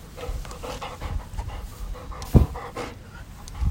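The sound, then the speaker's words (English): A female dog pants in quick, steady, breathy bursts, with one brief louder thump partway through and no voices. “There's a little bit of panting action here.”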